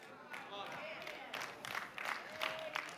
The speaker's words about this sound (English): Hear the nervous clapper? Yeah. Clap so he don't think it's us.